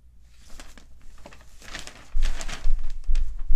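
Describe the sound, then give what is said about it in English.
Paper rustling and crinkling as it's handled: a steady run of dry, crackly bursts that grows louder and busier in the second half, with a low thumping underneath. No voices. “This paper's fighting me.”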